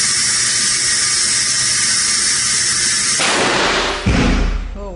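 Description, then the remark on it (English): A steady, high-pitched mechanical whine holds for several seconds, then shifts before a sudden loud blast erupts near the end, followed by a deep, rumbling boom from a simulated explosion, equivalent to IEDs used in Iraq and Afghanistan, in a 27-foot blast tube at a Boston University lab with a model inside. “built this 27-foot blast tube where a mouse, and in this demonstration, a model, is exposed to an explosion equivalent to the IEDs used in Iraq and Afghanistan.”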